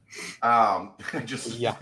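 A big, drawn-out yawn close to the mic: a breathy intake swelling into a loud voiced groan that slides down in pitch, then a second wavering, rising stretch, with no words.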